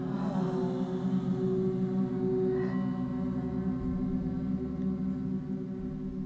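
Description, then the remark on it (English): A steady, sustained hum of voices, hummed on the exhale during a guided breathing exercise, holds one low pitch for several seconds at a constant, fairly loud level, with no words spoken. “As you watch the breath, let's sing hum together.”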